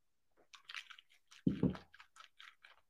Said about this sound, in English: Did you know that English phrasal verb, swish around? So normally you would probably do this with mouthwash. I'm going to do it with water. Hopefully no water spills out of my mouth.